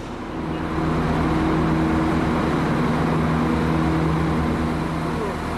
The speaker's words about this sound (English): Okay, we're in Limerick station, Culbert station in Limerick. It is 6:30. We're getting on the 6:35 a.m. train to Dublin.